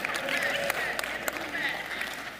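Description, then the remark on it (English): An audience applauds people wearing Chiefs attire, in a steady, dense wash of clapping with a few sharper claps standing out, mixed with the murmur of a crowd talking. “If you're new with us today, you don't need to applaud that. We're not looking for applause.”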